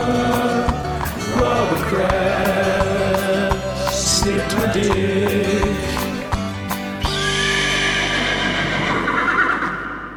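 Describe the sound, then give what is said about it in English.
A horse whinnies loudly, its shrill, wavering neighs repeating over a busy stretch of clattering hoofbeats and rustling movement, with no talking. “How fortuitous that we got a chance to use the horse-specific one to demonstrate something that we said about an hour ago.”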